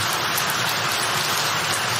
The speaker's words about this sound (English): Isn't it beautiful? I love going to sleep to that sound. It's a sweet sound. The sound of rain brings peace, you know? I just love the sound of rain on the roof.